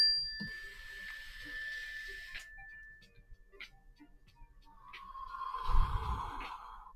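A mindfulness bell rings with a sustained, clear high tone that hangs for a couple of seconds, followed by faint scattered ticks and a deeper, swelling resonant tone near the end.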